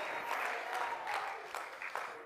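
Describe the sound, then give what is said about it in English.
A crowd claps steadily in praise of Jesus, a dense wash of many hands with a few sharper bursts standing out, fairly loud and continuous with no talking over it. “Somebody clap.”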